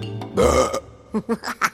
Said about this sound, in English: Burping. What is it and how does it work? Well, burping hinges on our mechanical makeup and the way we ingest our food.